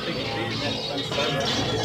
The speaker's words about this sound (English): Absolutely, why don't we just toss him over the edge right now. There he goes. Smashing through the ice.